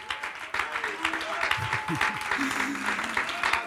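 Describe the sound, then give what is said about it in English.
An audience claps hands in a steady, dense wash of applause that runs throughout, with voices calling out and murmuring underneath. “Clap those hands, big brother.”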